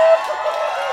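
An audience cheering, a dense, steady wash of many voices shouting and whooping together at full volume for about a second, with one sharp, sustained cry standing out at the very start.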